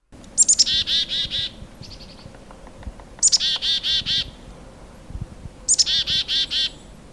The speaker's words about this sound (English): Do you know which bird that is? It's a black-capped chickadee. Yes, there are other chickadee species, and in fact, the Carolina chickadee makes a very similar chickadee-dee-dee sound, but the black-capped says the distinctive chickadee-dee-dee.